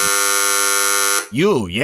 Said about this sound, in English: How do you feel when you maybe go to an apartment complex and really all that's there is an abrasive, brass buzz? Oh, you mean like this?